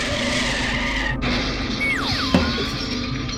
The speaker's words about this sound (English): Oh, son, I've died in this car accident.